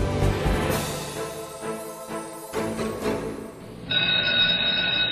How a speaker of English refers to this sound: The bell for the end of the class period sounded.